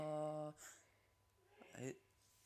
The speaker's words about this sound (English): Bless you. Dad's sneezing.